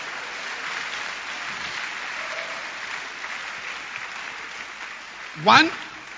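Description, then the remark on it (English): A church audience claps their hands for Jesus in a steady, dense wash of applause that holds at an even level, with murmuring voices mixed in and a sudden louder burst near the end. “You know, clap your hands for Jesus.”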